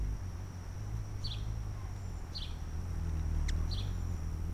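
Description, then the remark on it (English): A hummingbird by a window: its wings make a low, steady buzzing hum that runs throughout, broken by three short, high chirps spaced roughly a second apart and one faint click. No one speaks. “He hears the hummingbird by the window. It sounds kind of like a lawnmower, a little tiny lawnmower.”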